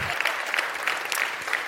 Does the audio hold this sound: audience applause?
yes